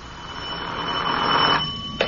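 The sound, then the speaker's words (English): A telephone rings with a steady, bright electronic trill that swells over about two seconds, fairly loud, then cuts off sharply. No one speaks. “But he did phone me the very next day, just like he said.”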